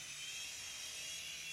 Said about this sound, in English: So we do things like fly remote control helicopters.